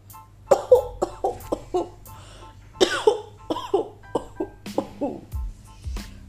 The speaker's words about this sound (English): She looked tired. And when she coughed, her small body shook and her chest hurt.